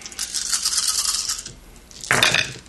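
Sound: dice being rolled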